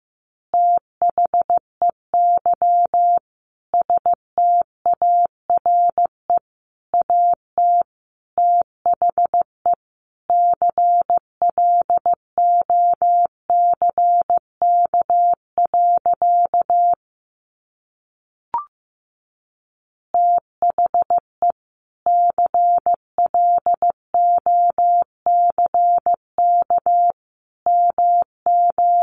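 Morse code sent at a steady 15 words per minute: one clear mid-pitched tone keyed into short and long beeps, running continuously with a brief pause partway through. No voices.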